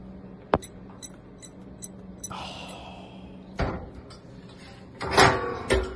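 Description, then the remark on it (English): A sharp click, then a series of small mechanical clicks and a scraping swish as a double-locked split door is unlocked and pulled open, ending in a thud and a rattling clatter. No voices. “Now listen to him put in the launch codes here. So he gets the door open.”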